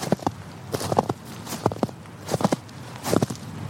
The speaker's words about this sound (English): I'm still crunching through snow, and it is really bitter out here tonight.